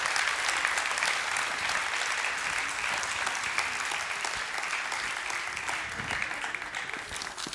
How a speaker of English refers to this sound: Let's give these kids and the team, kids team, a huge hand clap today.